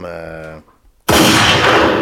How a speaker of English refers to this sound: One gunshot, you know, just for it's fair, innit? It's fair.